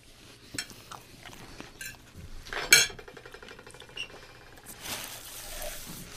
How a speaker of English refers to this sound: I don't feel like we're getting enough like true sound effects from your side. Oh, really? Because I feel like I'm just chewing the crap out of stuff in the microphone.